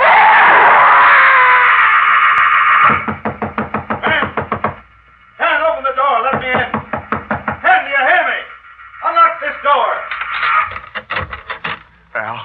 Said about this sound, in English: I got the call from your neighbors down the road. They heard you scream.